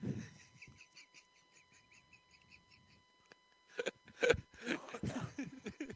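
Pigeons coo in a soft, steady run of repeated notes, followed by a few louder, rustling bursts near the end. No one speaks.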